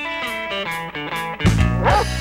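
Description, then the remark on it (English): A dog yaps in a quick series of short, pitched barks, then lets out a louder, rougher bark near the end. The sound is clear, with no talking. “Lost your dog? Found someone else's dog?”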